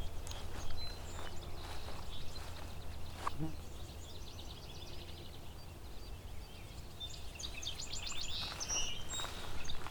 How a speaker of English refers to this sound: A barn swallow?